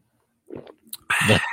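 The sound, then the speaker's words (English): A big gulp of Market Garden Brewery Citramax IPA beer: a soft wet slurp and a small click, then a loud, breathy swallowing rush that runs to the end. “That's a powerful sip.”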